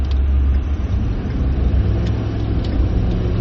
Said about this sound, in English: Somebody is doing 40 miles an hour on the interstate, and all the traffic's going around us is like 75, 80, which is all speeding.